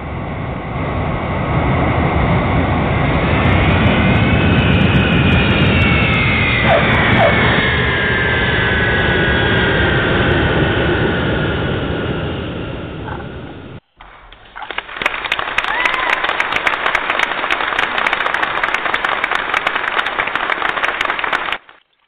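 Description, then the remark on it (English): A loud, steady roar of jet engines with a rising whine, then a brief cut to a continuous hissing engine rumble, like an airliner landing and rolling along the ground. “Well, it's getting too deep in here, so let's put the airplane on the ground.”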